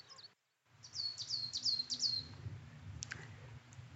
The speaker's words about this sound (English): So I tracked this bird all the way into this wonderfully gnarled hazel, hawthorn, and it is a coal tit. And it's going through its full repertoire of songs, which admittedly aren't like a number of Beethoven symphonies.